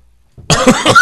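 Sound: cough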